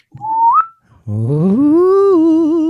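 A brief whistle slides upward, then after a short pause a low, eerie whistling tone swells in and bends upward in pitch, holding steady and loud until the end, with no talking.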